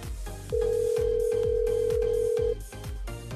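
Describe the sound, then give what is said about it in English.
A single steady telephone ring tone as radio hosts call an author holds for about two seconds, loud and clear, over rhythmic background music with a thumping beat; no one speaks. “You were obviously expecting our call. Do you normally answer the phone like that?”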